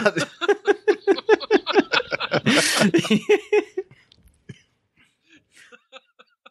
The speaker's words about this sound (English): Oh my god, I had a coughing fit there.